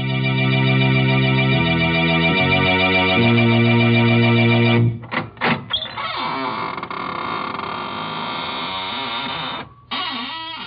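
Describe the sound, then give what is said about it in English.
Sustained, ominous organ chords give way to the long, drawn-out creak of the Inner Sanctum Mysteries squeaking door, its squeal wavering and stuttering in pitch for several seconds before fading. “This is Raymond, your host at the squeaking door.”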